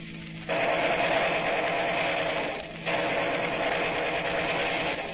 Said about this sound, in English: I better give them a ruffle with my synchronized machine gun before they shoot away my windshield.